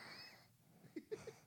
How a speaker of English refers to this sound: Why are you breathing into the mic? Say hi.